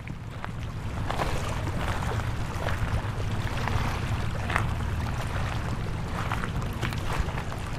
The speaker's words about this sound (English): It's a warm spring day, low tide at one of Vancouver's most popular beaches. On this morning, though, there are only a few people out exploring the shore, crunching through the seashells underfoot.